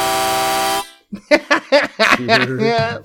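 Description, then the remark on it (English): A loud, steady counter buzzer horn sound effect blares for under a second with a dense, harsh harmonic tone, then cuts off as excited voices start talking. “Counter buzzer is back.”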